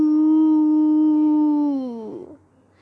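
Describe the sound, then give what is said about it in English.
A human voice howls words like a wolf, an example of a howled vampire dialect saying "how are you?": one long, steady howl that holds its pitch for about two seconds, then slides downward and breaks off. “While the wild vampires speak an old dialect known as Fanganese, which makes words sound like they were being howled.”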